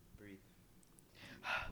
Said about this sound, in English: Not like that. That's panic breathing.